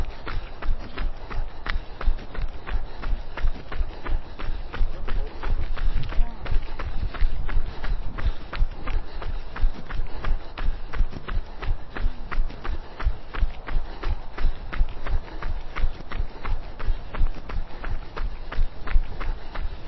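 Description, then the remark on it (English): Steady running footsteps pound out a quick, even rhythm for the whole stretch as the runner heads into a stiff breeze, with a low rumble of wind underneath. “Okay, running into the breeze a little bit.”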